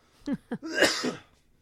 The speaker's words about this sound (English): Cough.